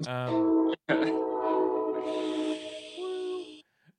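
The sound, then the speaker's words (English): A train horn blares loud in long, steady tones, broken by one brief gap, as a hissing rush of the passing train builds beneath it before fading out. “you know, I'm losing my mind because of the train.”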